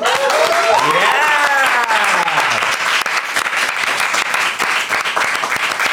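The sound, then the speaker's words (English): Sustained, loud applause from an audience welcoming guest Dame Mary Berry, a dense wash of clapping that runs steadily throughout, with excited whoops and cheering voices rising over it in the first couple of seconds. “A round of applause, please, for the legendary, the one, the only, Dame Mary Berry.”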